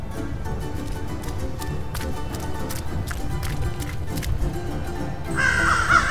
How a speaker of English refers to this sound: Crows are all gathered on top of the saloon, some circle in the air.